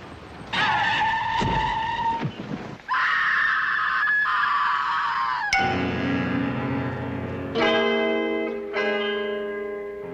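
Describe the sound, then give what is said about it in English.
A loud, sustained high-pitched screech of a passing truck's tires skidding and a man screaming as he runs out in front of it, lasting several seconds, then giving way to lower ringing tones that fade out. No one speaks. “So, feeling like he can't take it anymore, he runs out in front of a passing truck.”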